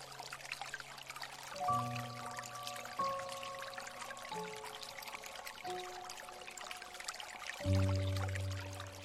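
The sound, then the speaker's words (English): Water flows and trickles gently and steadily throughout, a soft continuous murmur, while slow 432 Hertz piano notes ring out over it every second or two. No one speaks. “Picture yourself in a serene setting, surrounded by the gentle murmur of flowing water and the enchanting melodies of the piano.”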